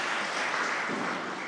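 A crowd applauds steadily, a dense wash of many hands clapping at an even, fairly loud level throughout, with no voices standing out above it.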